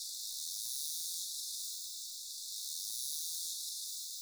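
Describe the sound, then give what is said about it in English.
A narwhal's terminal buzz: a continuous, high-pitched rasping drone of rapid-fire clicks, holding steady for about four seconds with gentle swells in loudness and no voices. Made while diving to great depths and closing in on fast-moving fish prey such as Arctic cod or Greenland halibut. “The next type is called click burst or terminal buzz, which to my ear sounds like a chainsaw.”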